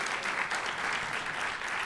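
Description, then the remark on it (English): A crowd applauds steadily as a show-of-hands straw poll vote, agreeing that self-aware AI would replace humanity; many hands clapping in a dense, continuous patter that stays at an even, fairly loud level throughout with no voices standing out. “Round of applause for if AI ever becomes self-aware, it will inevitably replace humanity as the dominant force.”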